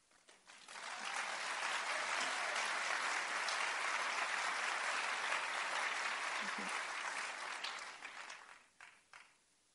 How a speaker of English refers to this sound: I appreciate your applause, but you know, in my head, I'm still thinking, what is it that they're really thinking?